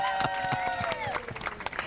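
An audience applauds Ken Waisman and Tom Moore, the original producer and director of the musical Grease, at its 50th anniversary, with scattered, uneven claps mixed with excited cheering and whooping voices, a lively burst of approval throughout.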